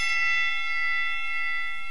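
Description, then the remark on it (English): A bell rings out loud, its bright metallic tone sustaining steadily for about two seconds with no voices. “Let's start the show. Ring the bell.”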